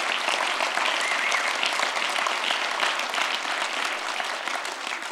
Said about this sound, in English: And the community here, you can clap for that.